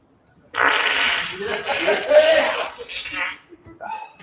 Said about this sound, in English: We're going to run that back. Spoiler alert, he's going to fart.